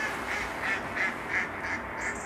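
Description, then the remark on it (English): A mallard duck at Lochleven National Nature Reserve quacks in a quick, steady run of about six or seven nasal calls, moderately loud, with no one speaking. “That will be one of our mallards, yeah, having a wee laugh at us.”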